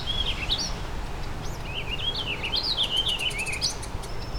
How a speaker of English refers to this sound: It's like two warbling vireos and the Tennessee warbler.